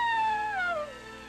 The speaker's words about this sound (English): In the dawn, a coyote lifted his nose and howled.